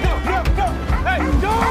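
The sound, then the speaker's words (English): A dog barks and yips, a quick run of short, high, rising-and-falling yelps repeating over about two seconds, fairly loud against a low rumbling background. “Whatever happened to you, dog? You used to be a legend.”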